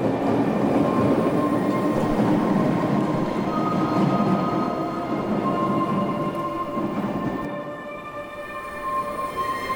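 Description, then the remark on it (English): A train rumbles heavily as it pulls away from a platform, a steady low roar layered with thin metallic whines, easing slightly in loudness toward the end. No voices. “Then the train pulls away.”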